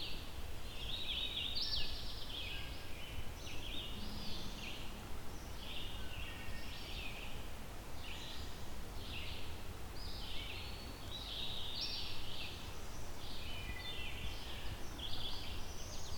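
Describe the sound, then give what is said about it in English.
A whistly bird in the Mahon Tract sings short, whistled phrases over and over, each bright burst of notes separated by brief pauses, above a steady low outdoor rumble. “It's a very whistly bird, as you can hear.”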